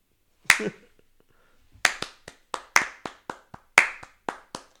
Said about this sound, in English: My clapping's too loud for children.